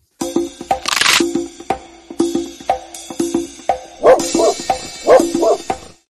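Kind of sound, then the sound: animal, dog barking sound effect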